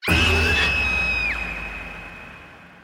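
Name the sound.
woman screaming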